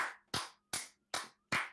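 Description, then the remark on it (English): A short round of applause: five sharp, loud hand claps in a steady, evenly spaced rhythm, each crisp and bright, with brief silences between and no talking. “So, Matt Judon, first off, round of applause to us.”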